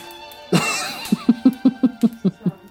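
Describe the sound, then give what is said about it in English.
A harsh, sudden cough bursts out, followed by a quick run of about eight short, evenly spaced coughing spasms in a steady rhythm, fairly loud, with no talking. “Don't be sorry. You can cough on this.”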